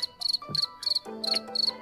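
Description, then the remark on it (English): A cricket chirping sound effect in short, rhythmic bursts of high trills, steady, with faint lower tones underneath and no talking. “How dare you reiterate it, chuckle a little, and then put the crickets.”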